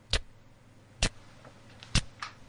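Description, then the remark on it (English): Sharp ticking like a clock, clicking about once per second, actually water dripping after rain in a lounge, with a fainter extra tick near the end over a low, steady background hum. “Why am I hearing a ticking noise?”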